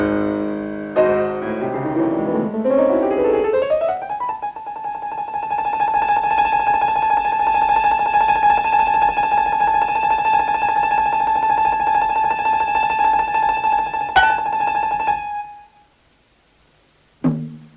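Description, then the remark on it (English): A recorded piano passage from Franz Liszt's Hungarian Rhapsody No. 2, also known as the theme from the Tom and Jerry cartoon The Cat Concerto: a quick cascading run of notes, then a long bright sustained tone that holds steadily, a sharp accent near the end, and silence. No voices. “That is Franz Liszt's Hungarian Rhapsody No. 2, better known maybe to my guest Long Long as the theme from the Tom and Jerry cartoon, The Cat Concerto.”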